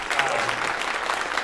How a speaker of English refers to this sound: I get a lot of applause. Thank you very much for that.